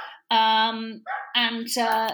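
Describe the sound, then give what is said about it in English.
A dog barks in a few loud, drawn-out, almost whining bursts, one right after another, with no other sounds around them. “Sorry, can you hear my dog? Is that a hungry dog?”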